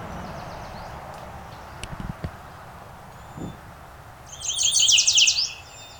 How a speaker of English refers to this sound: Got a lot of the sweet, sweet, sweeter than sweet song. There, this warbler's coming right up to me.